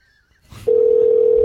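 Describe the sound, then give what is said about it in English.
After a short rustle, a telephone ringing tone comes on the line, a loud steady electronic hum that holds unbroken to the end. It is a Skype call to Angela Kinsey that goes unanswered. “Calling? Ringing.”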